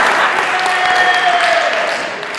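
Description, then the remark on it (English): A crowd breaks into sustained applause, a dense, steady wash of many hands clapping at once, fairly loud and even throughout, with a few faint voices mixed in; a roll clap for the person running the slides. “So if you guys on three, say, roll clap, that's good.”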